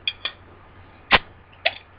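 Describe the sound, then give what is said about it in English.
The cap of a Sam Adams Hellas Lager with Orange Blossoms bottle, brewed by the Boston Beer Company, pops off with one sharp, loud snap, set among a few lighter metallic clicks before and after it. No one speaks. “Shall I pop your top? All right. And the pop.”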